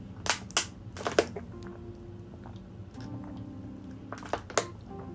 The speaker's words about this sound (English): Excuse me as I get some water to soothe my throat.